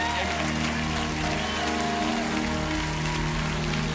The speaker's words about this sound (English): If you believe that God can bring another Jesus revolution, give the Lord a great big shout. Clap your hands on the power of his resurrection.